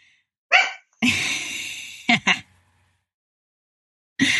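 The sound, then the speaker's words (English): A senile 14-year-old poodle making odd noises: a short whiny yelp, a long raspy wheezing snort, two quick snuffles, then another burst after a pause. “Real people with real dogs. With real dogs. Yes. My senile 14-year-old poodle.”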